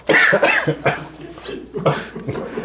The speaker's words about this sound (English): This is a really good one to just listen to. That's Baron Vaughn doing the coughing.